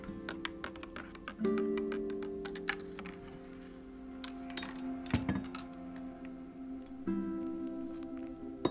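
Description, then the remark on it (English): Water pours steadily into a cup of Nescafe coffee, a hollow, ringing trickle with a faint rising tone, mixed with small taps and clinks of the cup. No one speaks. “Oh, I love the sound of the water as it pours onto my nice cup of Nescafe with my lot of bit of cream and my lot of bit of sugar.”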